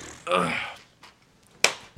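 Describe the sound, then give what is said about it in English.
A hand slaps someone's buttocks once on camera, a sharp smack following a short vocal exclamation, with quiet background sound around it. “That was you just got booty slapped on camera.”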